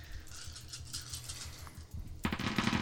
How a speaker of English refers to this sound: It's a lot of dice. Oh, that was a big roll.